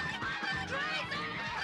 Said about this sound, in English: Now, it's time for the heavy artillery. Killer geese.